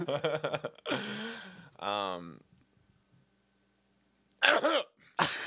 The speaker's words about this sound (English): I had to clear my throat. Into the mic. I had to clear it.